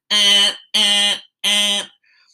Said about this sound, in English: As an audience member, I'm thinking to myself, dude, this alarm clock is about to catch an ass beating for the fucking ages.